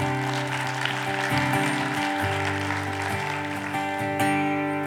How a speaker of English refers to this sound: Well, why don't we clap to the Lord here?